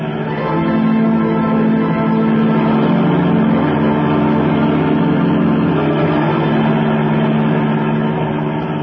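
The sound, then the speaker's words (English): A taxi's engine roars steadily and loudly at high speed as it follows another car, a continuous droning hum with rising and falling pitch, with no talking. “Okay, lady, but this is going to be one fast ride.”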